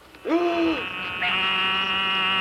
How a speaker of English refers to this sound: They breed in June and July and will often call while underwater. Once you hear the voice of this toad, you may think they sound like the cry of a lamb. Listen.